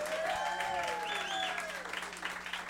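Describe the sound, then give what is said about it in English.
A crowd gives a round of applause for Go Bananas, the dense clapping holding an even volume throughout for a few seconds, with some cheering voices gliding over the top. “And how about a round of applause for Go Bananas, everybody.”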